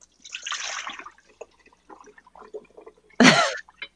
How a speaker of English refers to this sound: I heard someone pouring some water.